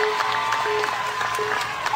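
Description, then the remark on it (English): A crowd cheers and applauds steadily for a competitor on an obstacle course, a dense wash of clapping with scattered shouts and whistles running evenly throughout, no pauses or spoken words standing out. “but you know everyone is cheering for him right now.”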